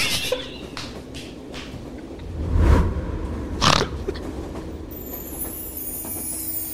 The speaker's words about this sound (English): Oh, this train trip's so long. I feel like I just want to take a big nap until we get there.